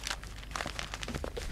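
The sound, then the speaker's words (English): Continuous crinkling of paper being rustled and flapped as it is swung to hit someone, with a scatter of sharper crisp swipes and crunches through the short stretch, and no voices. “You can't hit me with your paper.”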